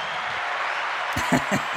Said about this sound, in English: I mean, the applause is great